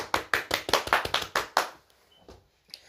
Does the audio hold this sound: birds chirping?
no